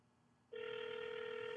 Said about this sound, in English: It's thrilling radio as we watch her dial the phone. Hopefully she'll pick up.